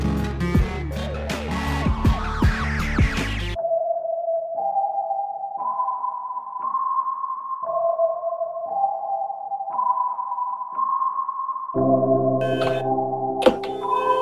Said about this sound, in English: What is that? Are you blowing a train whistle right now? What is that noise?